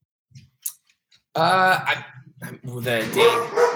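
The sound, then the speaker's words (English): A dog barks at a pool maintenance worker in a couple of loud, drawn-out bursts, after a few faint clicks and taps in an otherwise quiet moment. “Max is barking at our pool guy.”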